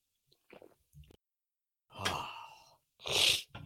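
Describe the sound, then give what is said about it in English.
A few faint mouth clicks, then a drawn-out slurping sip of beer followed by a loud, breathy, satisfied exhale, with no talking. “We're going to take a little sip of the beer and we're going to do a little NBA talk.”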